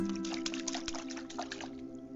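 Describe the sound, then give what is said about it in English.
A frog splashes in a pond: a quick run of small wet splashes and drips over a steady low background hum, moderately quiet, with no talking. “Frumity Frog watches. He splashes in the pond.”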